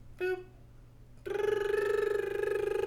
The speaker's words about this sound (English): Oh, goddamn, my phone's ringing. I'm just gonna let it go. I'm gonna go to voicemail.